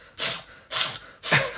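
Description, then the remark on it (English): A voice imitates sniffling with three sharp, breathy sniffs at an even pace and a short fourth one at the end, fairly loud, with no talking. “But he's sniffling constantly.”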